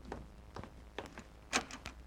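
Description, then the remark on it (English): Rochester answers and opens a door for Mr. Benny: a quiet run of about seven short clicks and thumps, uneven in rhythm, with one sharper clack near the end and no voices. “You answer the door this time, Rochester.”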